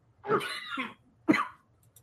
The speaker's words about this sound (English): I'm going to cough for 3 weeks now.